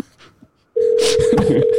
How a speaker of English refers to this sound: Now people can actually hear the phone ringing on the show.